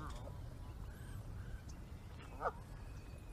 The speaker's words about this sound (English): Or I guess maybe they're baby geese, because they're walking with these geese.